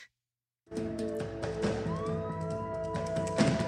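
Police car sirens start abruptly after a brief silence and wail steadily, with rising and falling tones over a dense, continuous drone. The sound is fairly loud and sustained, with no voices.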